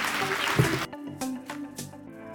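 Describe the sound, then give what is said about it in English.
A short burst of audience applause, a dense wash of clapping, gives way after about a second to music with a steady rhythmic beat. No one speaks. “I'll give them a round of applause.”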